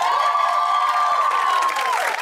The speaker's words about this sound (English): Someone like me could not be here without the many successful, powerful women of color who led the way, am I right? So let's give a round of applause to people like Mindy Kaling.